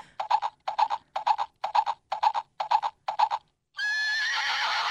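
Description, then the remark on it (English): A horse neighs: seven short, evenly spaced bursts come first, then a long, loud, shrill whinny with a wavering pitch that holds through the end. No one speaks. “Well, is that What's that horse? Up? Horse is possessed.”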